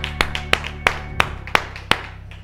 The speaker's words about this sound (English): Let's clap our hands as we're seated right now. Thank you, Lord.